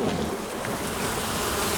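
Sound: swarm of bees buzzing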